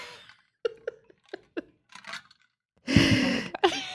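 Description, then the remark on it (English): A person yawns loudly, a contagious yawn set off by another's yawning, a long breathy, voiced stretch that drops in pitch, preceded by a few quiet, short breaths and small mouth sounds. “Now I'm yawning because it's contagious.”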